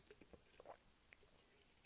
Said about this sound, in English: I am going to have a little sip of water. You guys hear my ice?